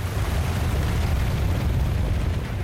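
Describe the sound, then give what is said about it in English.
A steady, powerful roar of a flooding river that has risen, heard from a cabin, deep and rumbling with a broad hiss on top, loud and continuous without pause throughout. “So I jumped up, and all I could hear was this god-awful roar.”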